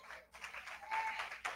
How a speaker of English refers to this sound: Clap your hands.